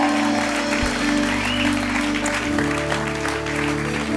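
A crowd claps steadily for about four seconds, a dense, even wash of applause with a low, sustained musical drone humming underneath.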